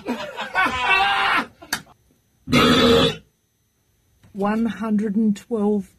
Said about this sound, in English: 112.4. And that's the loudest. That's the loudest burp of all time. That's it. That's the one. And that's the world record.